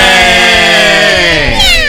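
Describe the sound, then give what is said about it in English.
A cat lets out one long, loud, drawn-out meow, a strained wailing cry that holds steady and then bends downward in pitch near the end. “Meow, meow.”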